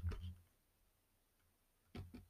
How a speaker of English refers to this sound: Sorry about that clicking. My computer freezes up. The mouse does anyway.